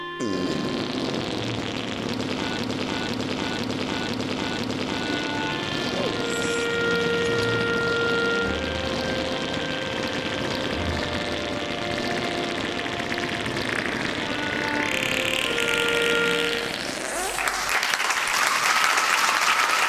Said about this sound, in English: Yeah, you gotta hate when it gets caught up in your cheeks like that. Why was that so long? That feels like it was twice as long as the last time you played it. I hate it when my farts skip. Exactly, the computer had a hiccup.